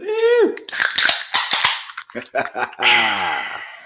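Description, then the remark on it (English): Several drink cans crack open in a quick, uneven burst of sharp snaps and short fizzy hisses, with a drawn-out voice just before and after. “It's Friday, guys. It's time to crack 'em.”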